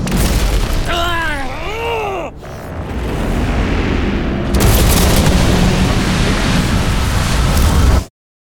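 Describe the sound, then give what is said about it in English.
A wavering, swooping electronic whine cuts off abruptly, followed by a loud booming crash that swells into a sustained roar of rumbling, crackling noise for several seconds before stopping suddenly: a spacecraft crashing, with impact and explosion. “Brace yourself, my love. Crash impact is projected as... What? Fatal.”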